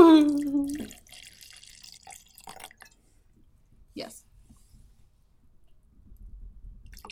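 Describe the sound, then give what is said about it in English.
A voice cries out briefly, then liquid spills and splashes from a bottle in a short burst, followed by a few faint drips and quiet background rustling. “It's turned into an ocean.”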